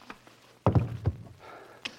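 A heavy, dull thud lands, followed a moment later by a second thump, a blow knocking a man unconscious. A faint shuffle and a small sharp tap follow.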